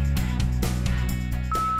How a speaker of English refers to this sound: Now it's your turn to speak at the beep.